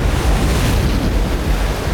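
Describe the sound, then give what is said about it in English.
Heavy ocean surf crashes and churns continuously, a loud, dense roar of water with gusting wind rumbling underneath and no voices. “The water crashed against her hand as if it was the face of a cliff.”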